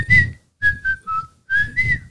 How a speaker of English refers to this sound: Oh, you can whistle. I can't whistle.